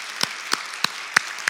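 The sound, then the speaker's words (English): Audience applause: a steady wash of many hands clapping, with a few sharper, louder claps standing out at an even, brisk rhythm. No talking. “Let's give them a round of applause this morning.”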